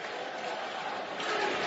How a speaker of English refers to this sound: there's something about the fans caring enough about a broadcaster to chant during a game